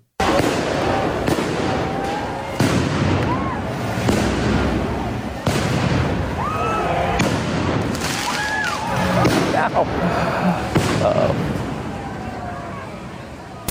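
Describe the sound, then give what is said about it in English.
Repeated fireworks bangs burst every second or two, fired at police in Portland, over a loud, constant crowd din, with shouting voices and whistling tones mixed throughout. “Mythical fireworks.”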